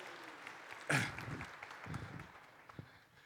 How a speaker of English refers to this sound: Thanks, guys. You did a good job. You could give them some applause.